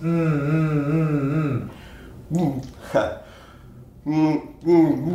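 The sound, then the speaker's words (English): A low, wavering hum blown through a straw into water in a bottle during a lesson, held steady for over a second, then broken into several shorter hummed bursts with a rough, bubbly gurgle mixed in. “As you're going to put the straw in the bottle, you're going to hum into the straw, which means air is going to be coming through the straw and it's going to blow bubbles right into the water.”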